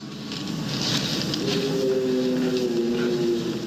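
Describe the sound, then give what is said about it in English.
A long, drawn-out howl, recorded late one night in New York State by a dogman researcher named David, rises out of a steady wash of background hiss and holds a low, wavering pitch for a couple of seconds before fading. “And it was a howl recorded late one night while researching.”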